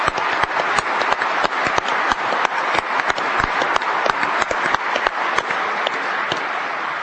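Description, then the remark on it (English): Sustained applause from a sizable audience for a group of gentlemen, a dense wash of clapping with sharper individual claps popping out, steady in volume for several seconds with no talking. “In fact, what I'd like to do is lead a round of applause for all these gentlemen for what they mean to this country.”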